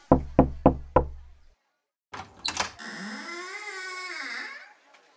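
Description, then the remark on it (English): Four quick, evenly spaced knocks on a door ring out clearly, followed by a short clatter and a long, wavering creak-like sound that fades out. “Okay, you knock on the door.”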